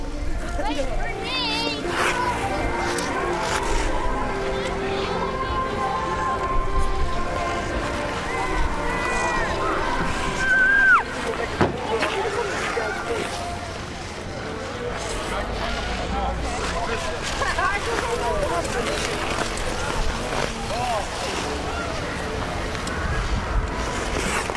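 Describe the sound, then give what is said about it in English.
Skaters on the Frog Pond outdoor ice rink on Boston Common in winter: a steady wash of blades scraping and gliding under a constant murmur of many voices, with a couple of brief, high squeals cutting through. “Dennis Foley recorded these wintry sounds at the skating rink on Boston Common known as the Frog Pond.”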